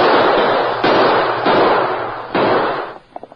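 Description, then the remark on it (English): Four loud gunshots crack out at irregular intervals, each leaving a long, hissing echo that blurs into the next, before a few faint clicks close it out. They are fired at a man fleeing from a house on horseback, heading for town. No one speaks. “Well, don't talk about it. Shoot him.”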